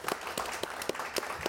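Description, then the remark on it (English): Steady clapping from a small audience welcoming the host of a panel, quick regular claps layered into a soft, continuous patter of applause at moderate volume, with no voices over it. “Big round of applause for our host”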